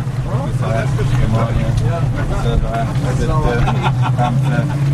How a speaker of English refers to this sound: A 16-foot whaler carrying a team of divers plows through the choppy waters off Saadiyat Island, a sandy man-made landmass just north of Abu Dhabi City.